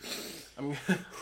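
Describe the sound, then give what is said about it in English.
Heavy, airy breaths huff right up against the microphone, followed by a couple of short voiced grunts or murmurs; fairly loud and raspy. “And I'm breathing really heavy.”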